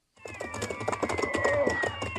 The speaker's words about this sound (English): Gosh, Dan, do you ever see so many cats in the air at one time?